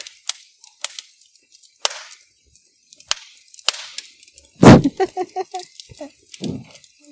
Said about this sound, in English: It's supposed to be fire crackling. Oh! There's a lot of crackling with no fire. Like, I hear the wood pop, and that's all I can hear.